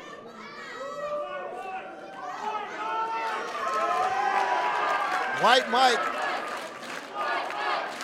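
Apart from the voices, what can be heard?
crowd chanting and cheering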